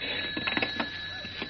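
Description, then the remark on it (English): A telephone rings with a steady, faint electric tone that holds throughout, with a few soft clicks and bumps underneath and no voices. “And hold the phone a little away from your ear so Kent and I can hear.”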